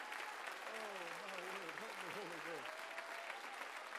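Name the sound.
audience clapping hands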